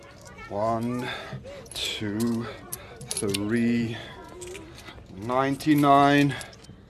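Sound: gold coins clinking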